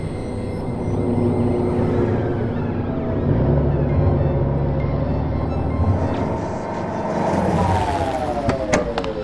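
Steady traffic ambience at a rest stop area of the New Madrid Coastal Expressway, Salamanca City, South Island, at 8:17 p.m. on New Year's Eve: a continuous low rumble of engines and tires, with vehicles droning past and a brief sweeping tone and a few sharp clicks near the end. No one speaks.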